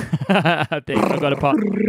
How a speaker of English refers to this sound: That was the elephant.